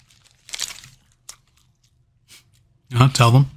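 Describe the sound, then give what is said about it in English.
Loud chewing of McDonald's burger sandwiches, with crunchy, smacking bursts spaced irregularly over a few seconds, followed by a brief stretch of someone's voice near the end. “Don't chew like that. I can hear it from all the way over here.”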